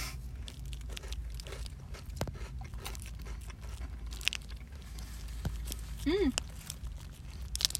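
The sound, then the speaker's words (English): Repeated crunching as a crunchy snack is bitten and chewed, sharp brittle cracks scattered irregularly over a low background hum, with a brief vocal murmur partway through. “I'm sorry for the crunches.”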